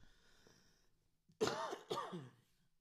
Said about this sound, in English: I have to cough right now.